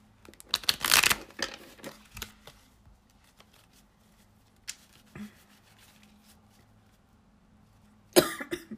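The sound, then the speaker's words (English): A couple of raspy coughs from a person who is still a little sick, one near the start and another at the end, separated by quiet stretches of soft rustling and shuffling of tarot cards, with no talking. “Sorry in advance again, I'm still a little sick, so there will be some coughs, sneezes, all that jazz.”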